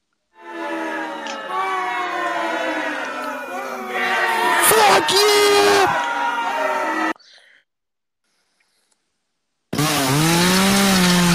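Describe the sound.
A voice mimics a slow, revving chainsaw: a long, raspy buzzing drone that swells and wavers for several seconds, cuts off to silence, then starts up again loudly.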